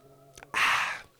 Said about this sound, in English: And as I clear my throat here, the voice is definitely starting to give out. Let me get a swig of water here.